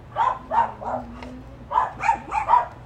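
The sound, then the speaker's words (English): A goat bleats in a rapid run of short, nasal calls, three in quick succession, a brief pause, then four more, each a loud, harmonically rich bleat. “Never seen a goat like this before.”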